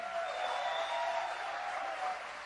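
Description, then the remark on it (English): A crowd at Presence OC church cheers and applauds continuously as a baby is shown to them, a dense wash of clapping with a few whoops and raised voices rising above it, steady and fairly loud throughout. “Yeah, you can cheer.”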